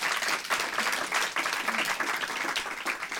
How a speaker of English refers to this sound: Could we have a round of applause for two of these people?